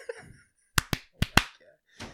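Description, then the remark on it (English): Four sharp hand claps in two quick pairs, a short pause between the pairs, followed by a softer trailing sound. No talking, just the crisp, percussive claps. “Give me four claps.”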